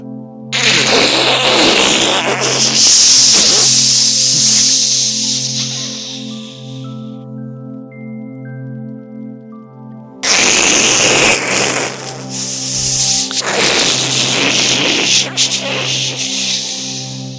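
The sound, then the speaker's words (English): A voice imitates ocean waves with two long, loud, rushing surges, each a breathy, growling whoosh that swells and fades, the first trailing off into a hum before the second washes in. “Oceanic waves.”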